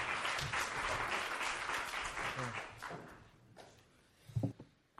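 An audience at Trinity Presbyterian Church in Spartanburg, South Carolina applauds to welcome a speaker back up, with dense, steady clapping that holds for about three seconds, then thins out and fades, followed by a couple of louder thumps near the end.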